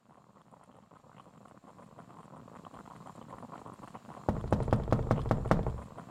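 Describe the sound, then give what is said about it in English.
A quick series of about six or seven sharp knocks on a door early in the morning, fairly loud, after several seconds of quiet low background noise. No one speaks. “Who's knocking on our door this early in the morning?”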